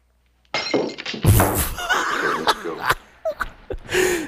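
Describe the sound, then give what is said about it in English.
A thrown glass shatters on the floor with a sharp, loud crash, followed by a spill of tinkling shards and a few scattered clinks as the pieces settle. “He just smashed the glass.”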